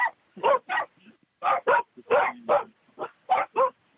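Several dogs bark in quick bursts, roughly paired, loud, with short yips and a faint whine between barks; no one speaks.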